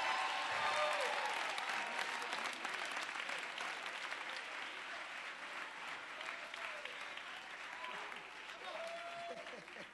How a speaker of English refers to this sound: I'm a prisoner of hope. Clap your hands if you're a prisoner of hope.